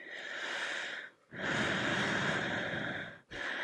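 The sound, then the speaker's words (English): Loud, heavy breathing over a phone line during a suspicious call from a withheld number: two long, harsh breaths separated by a brief pause, then another begins. No one speaks. “suspicious phone calls she received from a withheld number of heavy breathing on the phone”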